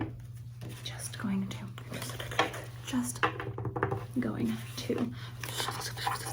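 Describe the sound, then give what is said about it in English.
A deck of tarot cards being shuffled quickly, a run of soft papery riffles and flicks, with someone whispering over it and a steady low hum underneath. “Now, I'm just going to very quickly shuffle the cards.”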